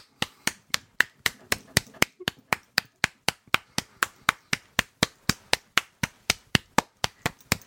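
A steady run of sharp hand claps keeps an even, brisk 4-4 beat, about three or four per second, crisp with no talking over them.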